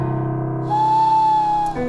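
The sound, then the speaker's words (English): A voice imitates an owl hoot, one long, steady, held tone with a slight rise partway through, fairly loud and with no talking over it. “She just took herself off to have a word with her owl impression.”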